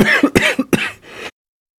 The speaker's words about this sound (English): And sorry I just started coughing at you all this time.